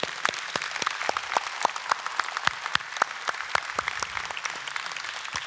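An audience applauds with dense, steady clapping, many sharp hand claps blending into a continuous crackling wash at moderate loudness, with no voices over it.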